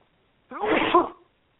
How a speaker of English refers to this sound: Hang on, I got to sneeze.